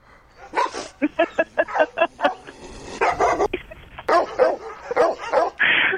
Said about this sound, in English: Wait, Kyle's playing these dog sound effects and it's just so I cannot concentrate on Ishi Moo Moo Moo Moo Pie.